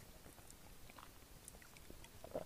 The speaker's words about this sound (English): And on cheers to that, actually, I'm gonna take a sip.